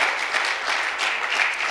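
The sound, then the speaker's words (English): Steady applause from a church audience honoring those who got the microphones and instruments working, a dense, even patter of many hands clapping at a constant loudness with no voices over it. “So as a church, can we give them a round of applause?”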